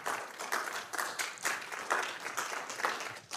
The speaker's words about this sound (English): Round of applause. Thanks.